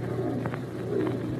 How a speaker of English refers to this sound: Yes, that was just an old screech owl. There it is again. Well, screech owls don't make their home this far north. They must have been brought up here like the monkeys you mentioned.